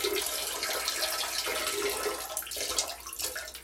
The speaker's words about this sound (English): God, Jesus Christ. I don't know why I can't stop pissing.